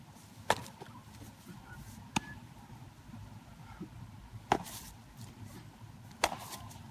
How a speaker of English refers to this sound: That was the sound of summer, was like the sound of a ball getting into a glove.